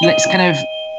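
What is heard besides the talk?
doorbell ringing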